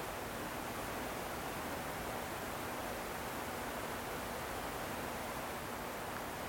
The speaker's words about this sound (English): I hear the hum of electricity. Very faint. But otherwise it's mostly the distant river and virtually no wind.